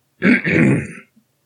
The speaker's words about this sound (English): Embarrassed by my audible outburst, I clear my throat in a weak act of subterfuge.